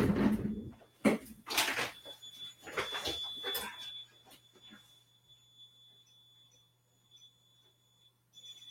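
A home alarm system emits a steady, high-pitched electronic buzz that holds on continuously, over a low hum, after a few clattering knocks and thumps at the start.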